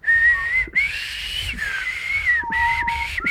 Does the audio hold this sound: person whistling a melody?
yes